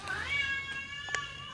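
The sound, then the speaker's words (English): A cat in heat lets out a long, high yowl that rises and then holds steady, a strained wavering cry with no voices over it. “You gotta stop trying to bang each other. The leg went up. Yeah, they're in heat”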